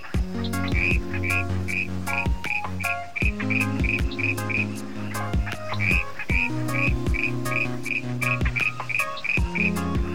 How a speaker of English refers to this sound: The clown tree frog has a distinctive raspy call.